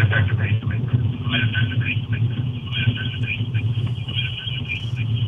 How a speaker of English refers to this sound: I think we have a little echo chamber here.